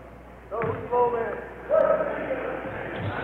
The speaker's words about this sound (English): I did not announcer's jinx it. I think it was because I knocked on the wood table here right after I said it.